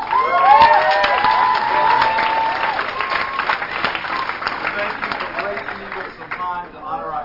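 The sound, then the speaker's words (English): A church audience breaks into sustained applause for the leader of its gold team, a dense, steady patter of clapping throughout, with excited whoops and cheers rising over it at the start and again near the end. “He leads our gold team. Let's give it up.”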